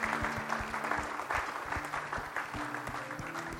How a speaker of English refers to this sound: And come on, let's give them a clap this morning. There's two people that responded.